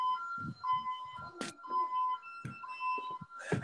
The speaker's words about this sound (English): Dude, what's that noise? I think it's my generator. I'm sitting in the office that has a great view of it. I'll move. That makes an annoying noise.